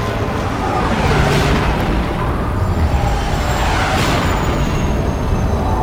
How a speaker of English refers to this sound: In minutes, the skies were swarming with Lardies. The sonic booms peppered the air.